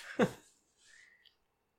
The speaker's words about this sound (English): I love the slide whistle.